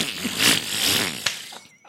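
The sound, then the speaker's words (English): A person blows a wet, buzzing raspberry imitating a fart as Humphrey Bogart might do it, one sustained sputter lasting over a second, then a brief pop and a fading tail. “Can I give you some actors, and you see if you can imitate their fart?”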